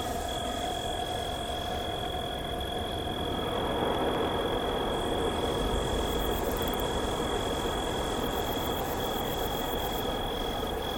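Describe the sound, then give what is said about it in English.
A low, steady drone of a distant airplane swells in partway through, layered over continuous high-pitched insect chirring that holds a constant tone throughout. “An accompanying drone faded in from a distant plane”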